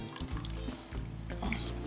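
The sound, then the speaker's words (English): A thick mixture is poured into a ramekin, filled about three-quarters of the way, making soft wet drips and squishy glugs over about two seconds, with a brief brighter splash near the end. “And then what we're going to do is we're just going to add that right to the ramekin. Don't fill it up all the way.”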